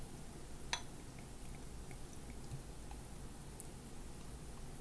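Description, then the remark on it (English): A Gin Barrel Aged Imperial Cucumber golden ale, brewed with cucumbers, basil and juniper berries, is poured into a Wicked Weed glass. A steady, faint fizzing crackle follows, with a couple of sharper clicks. It is quiet, with no one speaking. “I'll share the fizz with you and the gulp, the gloop, gloop, the gloop, gloop, gloop.”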